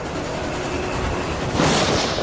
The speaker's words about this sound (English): Pretend you're overlooking a train track. Imagine a train racing past, faster than any train you've ever seen.